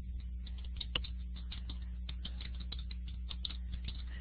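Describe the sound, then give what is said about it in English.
Rapid, uneven clicking of keys on a computer keyboard as someone types in a message during a call, steady throughout, with a low constant hum underneath and no voices. “So I'm typing in just in case”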